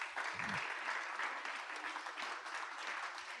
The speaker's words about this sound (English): Will you guys just give these guys a round of applause, please?